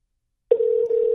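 After a moment of silence, a steady telephone dial tone switches on abruptly and hums at a constant pitch, clear, with no voices, as a call is placed to call someone back on their phone.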